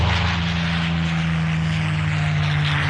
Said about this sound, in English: It's a Rolls-Royce Merlin engine, so I'm guessing that's a... P-51 Mustang. That's a P-51 Mustang.